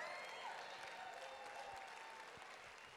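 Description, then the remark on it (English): A crowd applauds steadily for about three seconds, a dense wash of overlapping claps at an even volume, with faint vocal tones and whoops drifting through the clapping. “I think we need to clap a little louder and make the devil mad on that one.”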